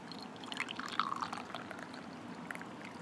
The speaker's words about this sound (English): A quick pour. It is Seattle-based, I think. Pour it up.